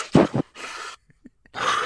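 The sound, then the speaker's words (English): A voice imitates the heavy, wheezing breathing of a big, heavy man: a couple of rough voiced gasps, then long raspy breaths in and out, separated by a brief pause with faint clicks. “It's something special just to see big, heavy, fat Italian man breathing heavy, being.”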